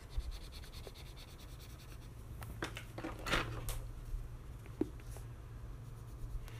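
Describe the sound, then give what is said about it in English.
Soft, scratchy pencil strokes rub across paper in irregular bursts as shadows in a drawing are shaded, with a few sharper scrapes standing out over a low steady hum. No one speaks. “Okay, I'm gonna draw shadowing here. They're shading. And then I'm gonna get a thin paper stuff and just shade that all up.”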